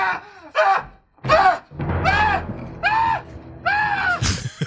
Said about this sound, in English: Here's a great old man scream. This is the pervert in the elevator yelling after the head gets chopped off. So he goes like this.